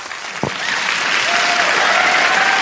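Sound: applause sound effect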